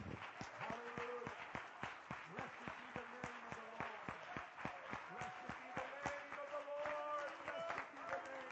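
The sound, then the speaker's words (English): A church audience claps their hands to the Lord in praise in a steady, rhythmic beat throughout, sharp repeated claps over a background of voices calling out and murmuring. “Clap your hands to the Lord and let's give him praise right now.”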